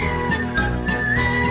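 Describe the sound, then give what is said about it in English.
A loud, sustained high whistle holds a steady pitch with slight wavering, layered over a dense, rumbling musical backing with no voices. “Whistle really loud.”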